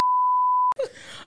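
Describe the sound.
A single steady censor bleep tone holds for most of a second, cutting off abruptly before a voice breaks in with a brief groan-like utterance.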